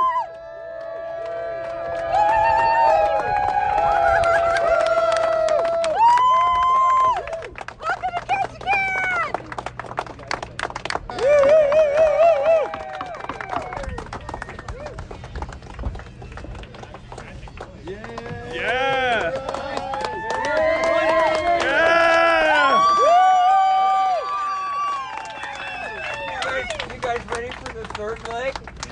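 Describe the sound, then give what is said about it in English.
A crowd cheers and calls out in greeting four arriving Canadian teenagers of Team MBR, who wear matching gray woolen sweaters. Many voices whoop and shout over one another in loud, overlapping bursts that rise and fall, with a constant low murmur underneath. “They were wearing their matching gray woolen sweaters with Team MBR patches sewn onto their right shoulder, looking tired, happy, and overwhelmed by the big crowd there to greet them.”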